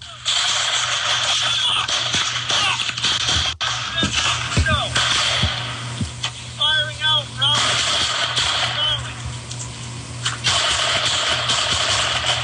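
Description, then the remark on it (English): A recorded sustained exchange of gunfire on Branch Avenue in Providence, Rhode Island, one shooter firing and others firing back: rapid, irregular sharp cracks and pops layered over a loud, continuous rumble, with brief pauses and indistinct shouting mixed in. “He's firing at them. They're firing back at him. It is a full barrage.”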